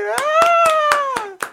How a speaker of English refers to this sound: Round of applause